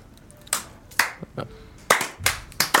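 Someone knocks on a door in what is meant to be Morse code, about eight sharp, hard raps in an uneven rhythm, some in quick pairs, with no voices over them.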